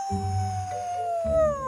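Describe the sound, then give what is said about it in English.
A single long wolf howl, a sustained wavering tone that slowly slides downward in pitch, fairly loud and clear with a low rumbling undertone and no talking. “To gather its pack, the wolf howls. To do so, it points its nose towards the sky and makes its famous "ow!"”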